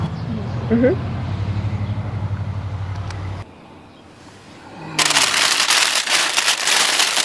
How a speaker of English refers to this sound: That is so crunchy. This man is just crunching a bag, and it is like the loudest thing I've ever heard.